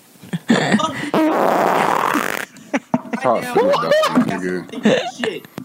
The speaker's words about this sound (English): I'm about to fart in my mic. You keep talking.